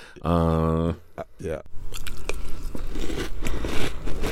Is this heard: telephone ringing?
no